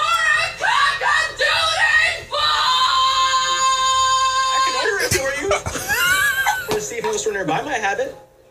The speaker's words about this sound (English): And then so she's just like has that scream and then she just stands in like that same pose after her scream, just staring for like 20 seconds.